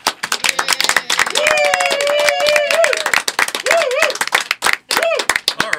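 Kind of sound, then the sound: crowd, round of applause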